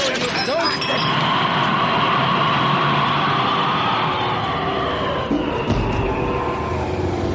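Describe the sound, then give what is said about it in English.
A brief crash of breaking glass gives way to a steady, loud rumble with a whining metallic hum of a foam rubber trolley car rolling along its rails on the San Francisco waterfront. “What a tremendous stroke of luck. I've landed on a foam rubber trolley car.”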